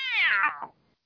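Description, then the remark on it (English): A single high, wailing scream from a woman in a film, like a yowling cat, starting strong and sliding downward in pitch before breaking off after about a second. It is loud, with no talking. “Is she still fucking screaming?”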